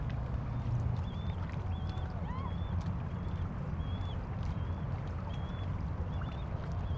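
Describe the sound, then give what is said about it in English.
Canoe paddles dip and strike the water in a steady rhythm over a constant low rumble of outdoor ambience, with faint bird chirps scattered above. “Hit the water.”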